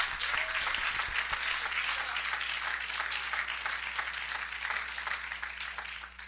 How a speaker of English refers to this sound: Come on, y'all. Let's clap our hands. That's the truth.